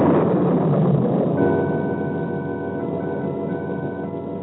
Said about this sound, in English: The storm broke as I left the house, but I was scarcely conscious of it and rode my horse without direction.